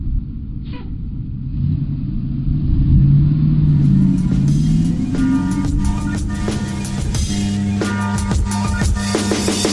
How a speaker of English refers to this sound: Bus is here. Let's go. Let's get on this bus.